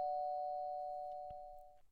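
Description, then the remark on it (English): A doorbell at a front door rings with one steady, unbroken electronic tone that holds for about two seconds and slowly fades, with a faint click partway through and no voices. “Eventually, she collapsed on the floor in tears and ended up falling asleep next to the front door to the seemingly never-ending bell.”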